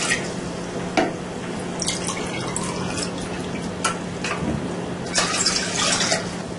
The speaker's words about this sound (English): So we put water into the pot first.